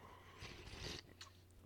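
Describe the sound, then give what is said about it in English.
A quiet slurping sip of coffee lasting about half a second, followed by a brief soft swallow or mouth click, with no talking. “Hold on 1 second, sip of coffee.”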